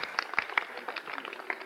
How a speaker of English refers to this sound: Whom are they applauding?